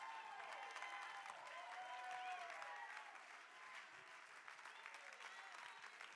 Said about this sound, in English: Clap your hands and give God praise in this. Come on, give him praise in this house. Come on, somebody can do better than that. Clap your hands and give God praise in this house.